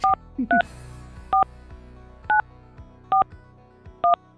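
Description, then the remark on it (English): A phone number being dialed during a live radio show to call a prize winner: a series of about seven crisp, clear touch-tone beeps at slightly uneven intervals over a faint background hum, with no voices. “Answer your phone.”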